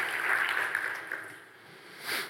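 Audience applause for courage, a dense wash of clapping that swells early, thins out, then briefly rises again before fading.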